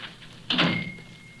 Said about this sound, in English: Close the door. Yes, sir. I have closed it, sir.